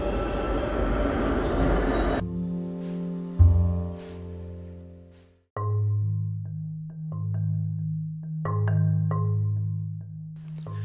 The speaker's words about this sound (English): Just listen to that recording from yesterday morning at the on the subway platform.